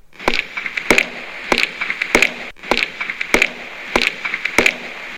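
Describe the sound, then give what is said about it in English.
Heavy footsteps thud across a creaky wooden floor in a museum in a steady, uneven rhythm, each step landing with a sharp, knocking crack. The sequence repeats twice, fairly loud, with no talking. “We heard heavy footsteps.”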